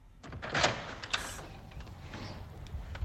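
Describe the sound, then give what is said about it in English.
A front door is opened with a rattling clunk and a sharp latch click, followed by a low, steady hum of outside ambience. No one speaks. “Open your front door and shout.”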